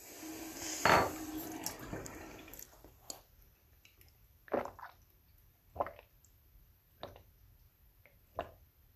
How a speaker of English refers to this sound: I guess I could have just put the recording like on pause, but instead you guys are gonna wait with me while I get some water.